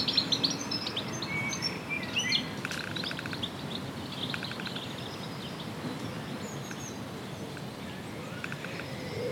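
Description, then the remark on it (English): Birds chirp and sing in scattered bursts over a steady, soft rush of breeze in a garden in South Mimms, with a quiet outdoor ambience and no voices. “The sound of the birds and the gentle breeze is silence.”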